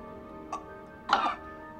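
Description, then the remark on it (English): A brief, light cough followed a moment later by a louder, fuller cough from actor Seth Green in a film scene, over a faint steady background hum with no talking. “And in this part, we do get a great performance from my buddy Seth Green, who says he like coughs, and then he's like, "Where's the race?”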